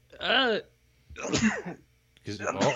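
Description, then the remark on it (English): A series of loud, voiced sneezes, roughly three bursts in quick succession with short pauses between them. Each one is throaty and sharp, with no speech around them. “Sneeze that out.”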